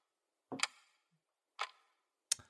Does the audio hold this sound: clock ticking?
yes